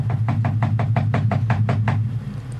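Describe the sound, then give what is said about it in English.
Someone knocks on a door about ten times in a quick, steady series of sharp raps, then stops, with a constant low hum underneath throughout. “I wonder why she's not ringing the doorbell.”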